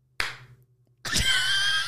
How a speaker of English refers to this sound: Anyway, yeah, I'll do the clap.